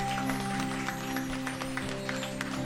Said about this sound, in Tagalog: Mas malakas naman na palakpak para sa Panginoon!